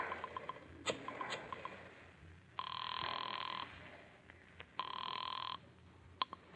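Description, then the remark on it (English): After a number is dialed, a few faint clicks, then a telephone rings twice with a steady electronic trill, each ring lasting about a second, separated by a short pause, fairly loud. “Pick up the phone, dial a number.”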